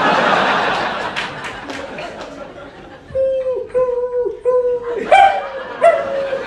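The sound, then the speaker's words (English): Crowd laughter fades out, then about four short, high-pitched yelping dog barks ring out in a quick, uneven series, fairly loud. “That's the one dog that fell out of your hands and went under the wheel.”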